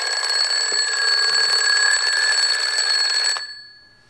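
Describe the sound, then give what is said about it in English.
A wind-up alarm clock rings loudly and continuously with a rapid metallic bell clatter, then stops abruptly after a few seconds, leaving a brief fading ring. “You've wound yourself up like that clock did, and you're going to have a nervous breakdown, just like this clock, or just like the other clock did.”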